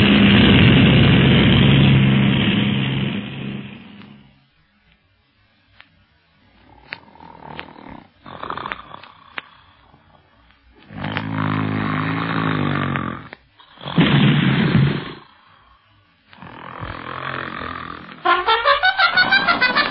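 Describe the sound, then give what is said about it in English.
A loud airplane engine roars at full power, cuts away, then returns in several surging, rising-and-falling bursts as the plane goes into a series of power dives, with no one speaking. “Hold tight, Carlos. We're going into a series of power dives.”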